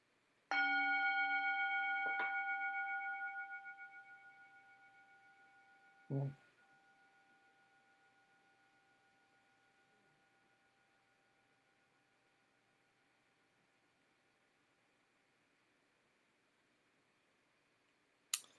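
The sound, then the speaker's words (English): A bell, rung to mark completing a cancer treatment, is struck twice in quick succession, its bright metallic tone ringing out loudly and then slowly fading over many seconds, followed by a soft thump and a brief click. “but no matter what happens with that, I get to ring this bell for doing it.”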